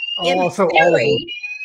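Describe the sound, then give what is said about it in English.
A fire alarm in a sheltered housing building for older people, set off because someone left a stove on, emits a steady, piercing high-pitched tone throughout, with someone talking loudly over it before the alarm continues on its own. “And somebody always leaves the stove on. Why does it let off your alarm too, though?”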